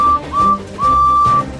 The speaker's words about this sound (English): Percy peeped his whistle and chased after him.